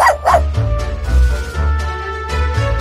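A dog barks repeatedly, opening with a couple of high, yelping yips and then several sharper woofs spaced about half a second apart, over a steady low background hum.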